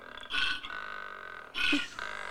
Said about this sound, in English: So, go ahead with your koala bear cry here. Oh, you have to turn it up. I turned it off for the podcast purposes. Sounds like a pig. Yes.